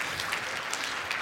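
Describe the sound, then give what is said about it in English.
A church audience claps together for newly announced church leaders in a steady, dense patter of applause that holds at an even level throughout, with no voices rising above it. “Those leaders are going to be, round of applause.”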